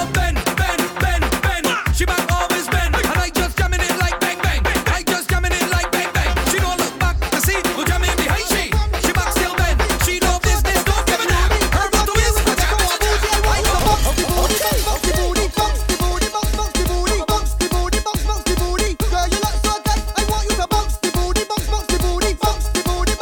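A dancehall song plays over a riddim, with a heavy, constant bass line and a punchy, steady drum pattern driving it loudly and without pause for the whole stretch.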